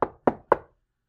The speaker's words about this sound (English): And then, a knock on the door.